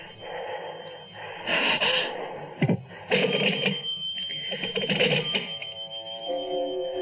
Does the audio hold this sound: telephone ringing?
yes